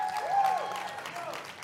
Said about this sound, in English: How are you guys doing? Why don't we give God a round of applause? Awesome.